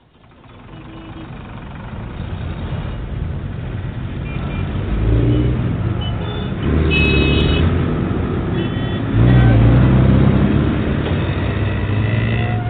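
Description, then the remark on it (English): A motorcycle engine revs on a road, its growl building in steady surges that grow louder over about twelve seconds, with no voices. “threw back her leather-clad head and roared in delight as she rounded a curve at the last minute on her motorcycle.”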